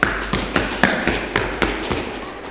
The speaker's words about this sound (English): Give me a stomp if that sounds pretty cool.